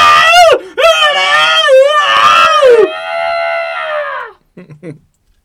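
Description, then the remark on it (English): Loud, piercing screams wail up and down in several quick bursts, then stretch into one long sustained shriek before trailing off into a few brief, fainter cries. “Because all of a sudden, bloody murder screams ring out.”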